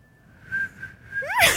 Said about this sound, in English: I can barely whistle.